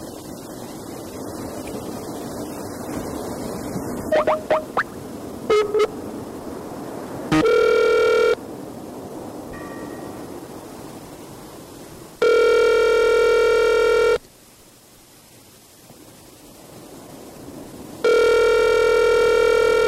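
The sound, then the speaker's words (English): A few short dialing beeps, then a phone line's ringback tone buzzes in loud, steady bursts separated by pauses over a faint hiss, with no voices, as a call to a main line fails to go through. “I'm trying to call the main line and it's not even going.”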